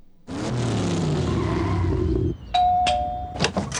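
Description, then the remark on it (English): A red sports car engine rumbles loudly as the car pulls up and then cuts out, followed by a bright ringing chime and a few sharp raps on a door. “The direct car pulls up, and then Winston Wolfe is knocking on your door”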